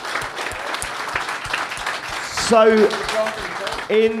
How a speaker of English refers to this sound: The staff have been amazing, so a big round of applause to the staff, please. You've been amazing. Thank you so much.